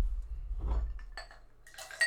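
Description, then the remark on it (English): Water is poured into a cup with a few light clinks of the cup, ending in a short bright splashing gurgle. No one speaks, and a low rumble runs underneath. “You want to serve me some water in your in my cup, though?”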